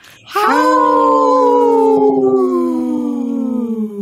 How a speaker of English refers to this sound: Howl!